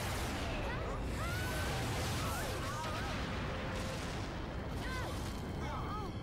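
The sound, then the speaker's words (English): A loud explosion sound effect, the same one used in the intro to Mystic Force, set in the middle of a forest, rolls on as a sustained, dense roar and rumble for several seconds, with thin whistling, warbling tones flickering over the din. “How safe is it to do an explosion like that in the middle of the forest”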